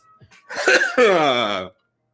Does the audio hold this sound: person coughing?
yes